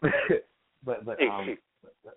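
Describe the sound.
A person clears their throat: a rough burst, a longer voiced rasp after a short pause, then two small, quieter throat noises at the end.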